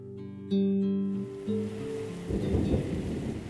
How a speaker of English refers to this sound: He's just under the water, gurgling along, waiting to pull you under.